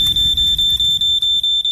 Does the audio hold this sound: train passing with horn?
no